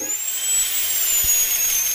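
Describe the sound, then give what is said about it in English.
A high-pitched dental drill whines steadily for the whole stretch, its thin piercing tone wavering slightly in pitch, loud, with a faint hiss beneath and no voices. “She hates the sound of drills.”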